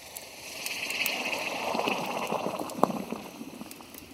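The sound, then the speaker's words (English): A hot forged blade is quenched in water, giving a steady sizzling hiss and bubbling that swells and fades over several seconds, with one sharp splashy pop near the end. “Now, let's get it into some water.”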